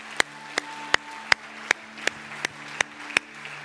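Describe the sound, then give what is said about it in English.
Steady, evenly spaced applause at a worship service: about nine sharp claps in under four seconds, each crisp and moderately loud, over a low, constant electrical hum, with no voices. “Man, let's round of applause.”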